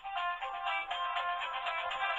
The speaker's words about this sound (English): Okay, I didn't realize that I had left my phone on. So, hold on a second.